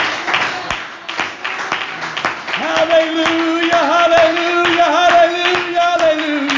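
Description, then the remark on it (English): A church audience claps hands to the Lord in praise in a steady, rhythmic beat during a Sunday morning service, sharp evenly spaced claps throughout, and partway through a sustained voice rises over the clapping. “Let's clap our hands to the Lord and give him praise.”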